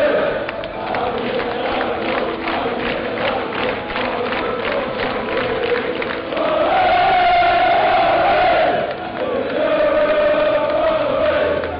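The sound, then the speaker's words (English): A huge football crowd roars and cheers in celebration after the final whistle of Espanyol 3, Wolves 2, with Wolves going through to the round of 16; a dense constant wall of noise swells into loud, sustained group chanting in the second half. “Well, you can just hear what it means to everyone here.”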